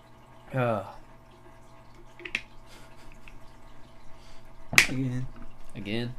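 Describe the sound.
A steady trickle of running water from a loud fish tank in a room fills the background, with a few sharp drips and snaps, while voices speak briefly over it.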